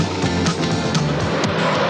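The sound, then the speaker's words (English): Big trucks race stack to stack on a track at 110 miles an hour, a loud, steady engine drone with rising whines and sharp bursts of noise, and no voices. “You're not supposed to pass this big truck, girl. Stack to stack at 110 miles an hour.”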